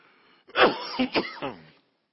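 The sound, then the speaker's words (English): A loud burst of about four harsh, sputtering coughs in quick succession from someone choking on drinking water that went down the wrong pipe, with no talking over them. “Drinking for drinking water. I went down the wrong pipe.”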